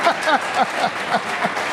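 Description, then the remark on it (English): A crowd claps steadily at a stock exchange opening bell, in a dense, continuous wash of applause, with a few higher-pitched cheering voices rising through it in short, recurring bursts. “It's the opening bell and the CNBC real-time exchange of the big board.”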